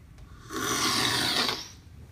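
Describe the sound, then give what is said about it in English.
A single sharp slurp of Ethiopian medium-roast coffee sucked from a spoon during a tasting, a loud hissing rush of air and liquid lasting about a second, with no talking. “So you're gonna just grab that bit of the coffee at the top, just into the spoon, getting as little as possible of that ground, and then the slurping.”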